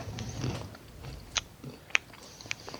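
Crunchy chewing of a snack, with a few sharp, crisp crunches at irregular intervals over soft mouth noises. No one speaks.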